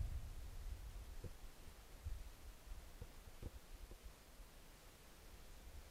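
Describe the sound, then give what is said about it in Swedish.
Soft, steady wind blowing, a low rumbling whoosh with broad hiss on top and a few faint brief knocks. No one speaks. “Och det är bara vinden som hörs just nu.”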